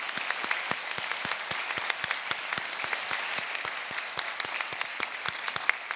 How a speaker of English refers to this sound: Join us as we give praise to God and bear God's creative and redeeming word to all the world. And we welcome you with our applause as well.